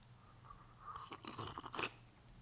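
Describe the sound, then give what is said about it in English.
A person noisily imitates slurping a cup of tea: a cluster of wet, sucking slurps lasting under a second, fairly loud, with no talking around it. “I can't listen to you slurp your tea for 4 days.”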